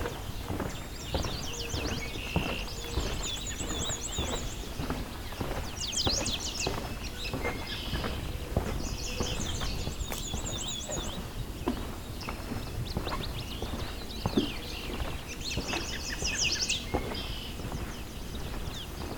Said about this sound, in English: High-pitched ringing warble is the black and white warbler.